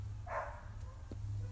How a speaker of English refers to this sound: Wow, what dog is that? Is it, like, in our backyard? It's a neighbor's dog.